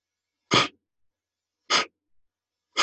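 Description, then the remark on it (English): Three sharp, forceful exhalations through the nostrils during a breathing exercise, each a short breathy burst at an even pace about a second apart, with silence between them and no talking. “So it's a very forceful exhalation through the nostrils and a passive inhalation.”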